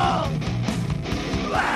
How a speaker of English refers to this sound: Now, I want you to know where we got that recording from. This guy used to come to Potato Salad. He used to come to the studio and yell into the doors the whole time we recorded the show.